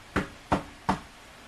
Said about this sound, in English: Hang on, let me knock on this door and ask them.